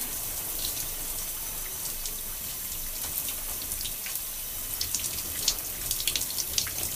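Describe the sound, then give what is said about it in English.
Steady stream of running water from a shower, a continuous hiss with splashy spatter rising and falling as hands move through it while exfoliating gloves are washed off and the person rinses off. No one speaks. “And as I wash off the gloves, I rinse off.”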